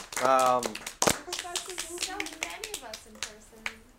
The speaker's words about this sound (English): So again, I'd like to thank you all for being here. This is nothing without you guys sharing your thoughts and ideas. We can clap. We can clap for you.